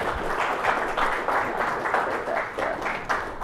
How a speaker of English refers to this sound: So with your applause, please welcome Admiral McAllister.